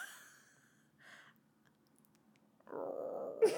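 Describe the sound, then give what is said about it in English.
Someone vocally imitates a dad's stomach rumble: a couple of brief throaty sounds, a pause, then a low, gurgling grumble that builds and ends with a sharper burst. “Yeah, I was trying to make it stomach noise.”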